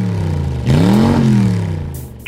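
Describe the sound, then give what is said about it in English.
A rented Mustang sports car engine idles with a deep rumble, then revs up sharply in a single loud surge before easing back down, on its own with no voices. “I experienced a hint of the Diderot effect when we rented that swanky Mustang.”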